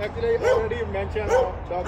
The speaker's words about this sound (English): Oh, God, it's a pig. It's a barking pig.